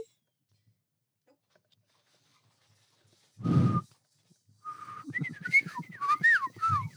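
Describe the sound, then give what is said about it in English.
After a short burst of voice, someone whistles a warbling, up-and-down birdsong imitation, quick trilling notes that swoop and flutter for a couple of seconds, fairly loud against an otherwise silent background. “If you didn't tune in for the highest quality of bird calling content, oh well, because we're professionals.”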